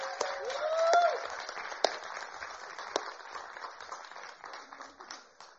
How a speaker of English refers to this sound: Why don't you welcome them as they come? You can applaud loudly.